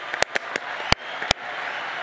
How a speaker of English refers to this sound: So, and this is great. Let's give that a hand clap, please.